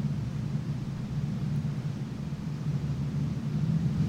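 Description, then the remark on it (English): A low, steady engine rumble that sounds like a car revving as it drives past, droning throughout and swelling slightly louder near the end, with no voices. “See, it just sounded like it revved, like an engine”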